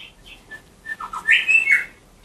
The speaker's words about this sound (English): Here's David's recording of the grey shrike thrush.